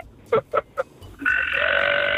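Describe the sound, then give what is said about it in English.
A kid burps on command: three quick, croaky burps in a row, then one long, steady belch that drones on loudly with a raspy, buzzing tone until the end. “Kid says he could burp automatically.”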